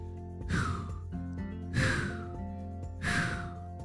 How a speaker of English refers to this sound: Nora calmed her breathing by breathing 3 deep breaths, which helped her feel a lot better